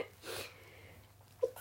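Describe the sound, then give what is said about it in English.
A single muffled sneeze bursts out early on, fairly quiet and breathy, followed by soft background hiss and a brief short squeak near the end, with no talking. “They're gonna make me sneeze.”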